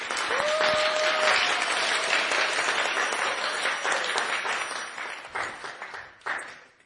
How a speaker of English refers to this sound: So a huge round of applause